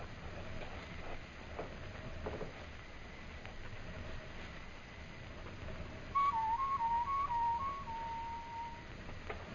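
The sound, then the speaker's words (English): A human whistle imitates a night bird call, a short series of wavering, stepped notes rising and falling over a low, steady background rumble. “And when you get on the far side, whistle like a night bird.”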